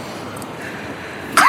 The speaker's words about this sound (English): And … is coughing into the microphone.